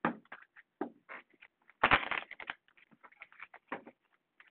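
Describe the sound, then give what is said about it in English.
Tarot cards being shuffled for a Virgo reading: a run of quick, papery flicks and taps, with a denser riffling burst in the middle, then scattered softer slaps. No one speaks. “One more shuffle. One more good shuffle.”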